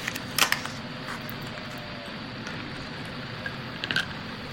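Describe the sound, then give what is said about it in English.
A few ice cubes from a tray clink sharply into a glass of whiskey, one or two at a time with pauses between, over a steady low background hiss. “So let me toss a few ice cubes in there.”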